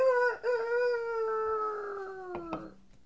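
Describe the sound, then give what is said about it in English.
A person imitates a rooster's crow at sunrise to wake everyone up, one long, loud, drawn-out call that slowly falls in pitch, ending with a couple of short sharp clicks near the end. “says no one because there's no chickens nearby.”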